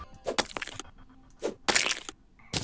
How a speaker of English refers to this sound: Oh, you knocked down my ice wall. Now the slimes are going to get through.